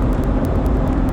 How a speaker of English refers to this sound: that Nissan was like, I don't know if I'm going 70 or 50. I'm fluctuating between the two. And I'm in the left lane and everyone wants to pass me. And no one can tell if they can or not. Speed limit 60. Yeah. And I'm going 71.